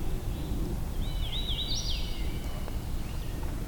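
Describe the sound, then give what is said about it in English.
A hooded warbler sings one short, thin phrase of clear, slurred whistled notes over a steady low rumble of wind or background noise, at the parking area of the Tionesta scenic area. No one speaks. “And at the parking area, there's a hooded warbler.”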